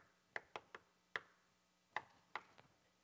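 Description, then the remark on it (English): A bouncy, uneven rhythm of seven light knocks on a door, quick taps grouped in a playful pattern, crisp with silence between them and no voices. “Remember the playful knock?”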